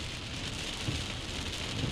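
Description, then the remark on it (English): Heavy rain pounds steadily on a moving car as it is driven through the downpour, a dense, continuous hiss of drops over a low road rumble, loud with no voices. “Oh, you hear those rain? Listen to this.”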